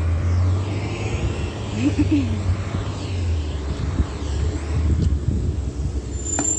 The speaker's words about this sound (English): And Route 61 pulls up now, bus number 2356. Understand this bus was already here because it did not drive up on the street and cross path the way that it does when I'm on the bus. This bus was already here.